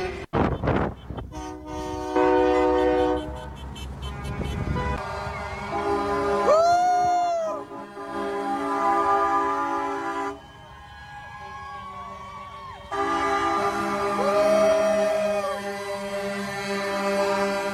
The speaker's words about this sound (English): This is by Action Santa outside of Edmonton heading to Calgary, January 23rd, 2022. Convoy. More than trucks, lots of cars and trucks. Very impressive. This goes on forever.